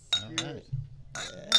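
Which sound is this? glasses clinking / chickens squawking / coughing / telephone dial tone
glasses clinking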